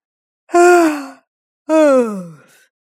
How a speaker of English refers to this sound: What now? Can't even yawn now? I'm tired and bored. I've been here forever.